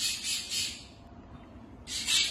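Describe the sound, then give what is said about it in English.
Harsh, raspy bird squawks come in two bursts, one at the start and another near the end, loud, with a quieter gap between them and no talking. “You see, even the birds has something to say.”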